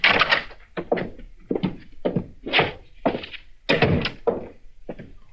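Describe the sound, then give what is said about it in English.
A door being opened, heard as a rapid series of heavy wooden thunks and knocks, fairly loud, with no voices. “All right, open the door”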